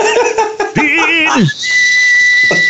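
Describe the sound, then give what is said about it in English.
A person whistles, a warbling trill giving way to a single steady high note held for about a second, with brief laughing and voice sounds around it. “I can't go into the thing to whistle that quickly.”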